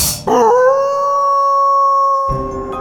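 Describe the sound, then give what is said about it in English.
A single long, loud werewolf howl sound effect rises briefly, then holds a steady, drawn-out pitch for nearly two seconds before breaking off, with no talking. “Next time you see a full moon, howl at it and pretend you're a werewolf.”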